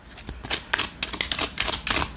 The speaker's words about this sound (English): I've been shuffling my deck and haven't pulled any cards. It just feels good to shuffle it. I feel so good to shuffle.